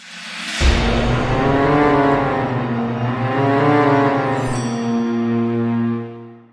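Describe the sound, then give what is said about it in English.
A steam train sound effect for the Hogwarts Express, the scarlet steam engine of Harry Potter: a sudden loud burst gives way to a sustained, wavering whistle-like tone that drones for several seconds before cutting off. No one speaks. “Teach us what we need to know about Hogwarts Express choo-choo.”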